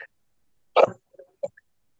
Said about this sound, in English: I'm going to cough here.